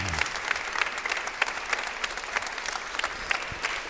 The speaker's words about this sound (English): Let's clap our hands for Pastor Young.